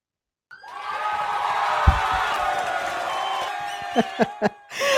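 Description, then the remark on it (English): A crowd cheering sound effect, a dense roar of many voices that starts abruptly and holds steady for several seconds, with a few sharp whoops near the end before it cuts off. “But cheering for you who actually are here”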